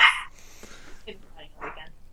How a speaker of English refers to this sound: All right, so there's a dog fight going on.